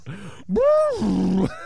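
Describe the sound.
A voice imitates an elephant: a brief low hum, then a loud, rising-and-falling trumpeting cry that flattens into a sustained buzzy tone before breaking off, with a small grunt after.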